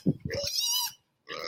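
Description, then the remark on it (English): Loud grunts from big farm pigs, averaging about 600 pounds each, quickly give way to a high, strained squeal, then after a brief pause another squeal starts up. “These are farm pigs.”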